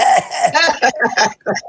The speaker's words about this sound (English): Oh, do you have the COVID? Don't tell me you got the COVID. No, I don't. Okay. That's my mother's cough,